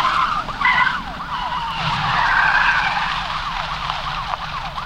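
Car tires screech and skid on a foggy road in a loud, sustained squeal lasting several seconds as the driver is nearly run off the road by a truck, with wavering high pitched chirps over a low engine rumble. No voices.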